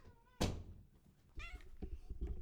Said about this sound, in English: Closing the door still.